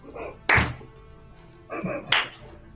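slow clapping

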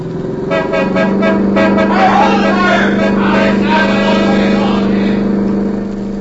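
car engine accelerating

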